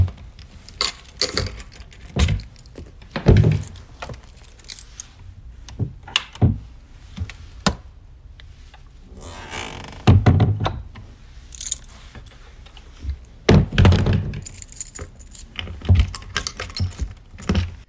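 A ring of keys, some of them skeleton keys, jangles and clinks repeatedly, with metallic rattles and a few sharper knocks, as the keys are sorted and worked into the lock of an organ collection door in a library.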